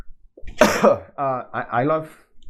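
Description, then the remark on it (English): A single loud, harsh cough that peaks the microphone, sharp and overdriven, followed by a few seconds of voiced vocal sounds. “I cough and it peaks, so I'm pretty sure anybody with headphones is dying right now.”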